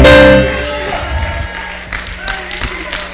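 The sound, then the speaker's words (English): An audience shouts in loud, overlapping voices with a sustained musical chord underneath, followed by a few scattered, sharp claps as the cheering carries on. “You better shout. Give God a praise. Clap your hands.”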